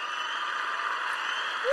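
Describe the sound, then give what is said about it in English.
A steady, dense wash of crowd applause, played as a sound effect for a round of applause for Frankie, many hands clapping at once with no distinct individual claps, holding an even level throughout at a moderate volume without any voices. “So, you know, let's just do a round of applause for Frankie.”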